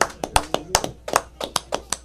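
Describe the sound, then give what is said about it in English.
Audience clapping: around ten sharp, bright claps in a quick, fairly steady rhythm over two seconds, moderately loud, with no talking over them. “Clap it up for my baby boy.”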